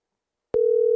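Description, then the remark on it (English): After a moment of silence, a steady electronic phone tone begins and holds at an even level, like the ringback heard while an outgoing call connects. No voices are present. “It's ringing.”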